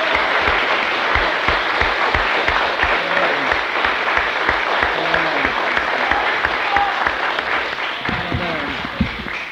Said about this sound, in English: Come on, give him a clap. Praise the Lord.